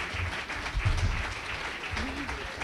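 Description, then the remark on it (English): An audience applauds to thank a panel, with a dense, steady patter of many hands clapping, moderately loud and continuous, with a faint voice briefly surfacing beneath the clapping. “Well, if there are no more questions, why don't we thank the panel and a little applause.”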